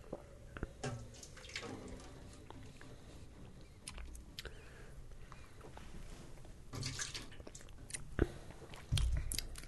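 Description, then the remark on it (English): Quiet sipping of a resiny, syrupy raspberry liqueur: soft slurps and wet mouth clicks come irregularly, followed by a fuller swallow near the end. “All right, one more sip.”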